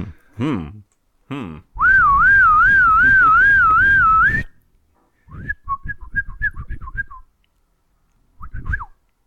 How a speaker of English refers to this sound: A shrill, evil whistle that the bosun's mate of the watch will blow in different patterns to signify different things on board ship